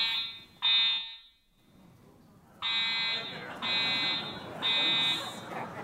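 A building fire alarm blares during a Long Now Foundation seminar on long-term thinking, in loud, repeated harsh buzzing blasts with short gaps between them, echoing through the building while faint background chatter continues underneath.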